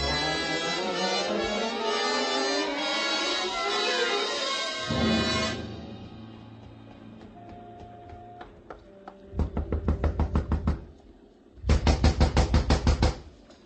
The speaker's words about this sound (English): Gentle knock does it